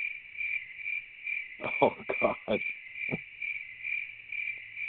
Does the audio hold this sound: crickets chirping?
yes